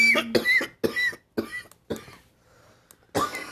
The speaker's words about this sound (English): Gonna wait for you to start up coughing before I take a hit of this terrible one.